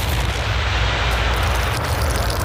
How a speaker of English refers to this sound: Fritz enjoyed ruining what would have otherwise been a quiet morning. More shells came down.